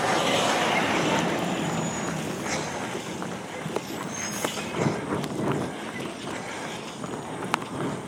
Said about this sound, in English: And you're going to be able to hear some concrete trucks here in a second. It's pretty cool.